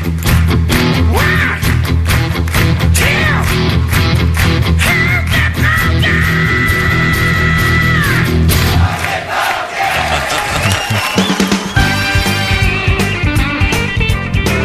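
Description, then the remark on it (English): A group of voices on the Bob and Tom Show lets out a long, loud, sustained primal scream together, raw and ragged, holding for several seconds before breaking into scattered yells and whoops. “One last primal scream.”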